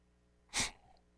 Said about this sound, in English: Ooh, I just sneezed. Wow. Bless you. Thank you. Yeah, I muted it so you guys didn't have to partake.